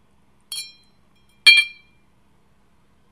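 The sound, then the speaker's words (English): Two bright glass clinks about a second apart, fairly loud, as a shot glass of cherry liqueur is flipped over into a glass of vodka and lemonade, each ringing briefly before fading. No one speaks. “Hypnotic vodka and lemonade with a shot glass of cherry liqueur flipped over.”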